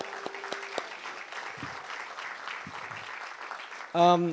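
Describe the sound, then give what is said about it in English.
Steady applause for the interns, a dense crackle of many hands clapping that holds throughout, with a few louder claps early on and a voice breaking in strongly at the end. “You guys can give yourselves a round of applause, please.”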